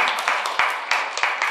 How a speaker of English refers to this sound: Yeah, you can clap. That's great.